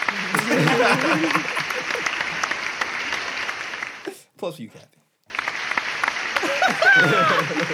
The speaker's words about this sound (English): I just realized you gave me them little sympathy applause.